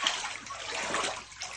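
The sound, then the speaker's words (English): Floodwater sloshes and splashes steadily, a dense, hissy wash of moving water, fairly loud, with no voices. Flooding in the Northeast from the remnants of Hurricane Ida. “Homes are flooded, basements taking on water.”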